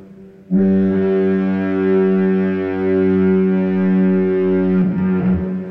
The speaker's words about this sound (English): Would you foghorn that, please? Oh, that certainly, that might even get the big horn here.